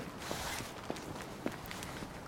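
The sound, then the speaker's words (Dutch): Steady footsteps walk at an even pace, each step a soft, distinct tap, over a constant wash of outdoor background noise with no one speaking; walking through an older residential neighbourhood of Kanaleneiland, on the Bertha van Susterlaan. “Dit gedeelte waar we nu lopen is een beetje een oudere wijk.”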